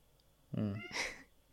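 animal, cat meowing

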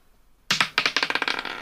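household object, dice being rolled

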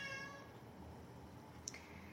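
animal, cat meowing

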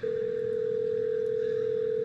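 signal or alarm, telephone dialing tones

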